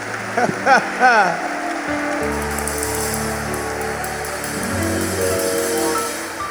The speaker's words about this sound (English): Another hand clap for the bishop.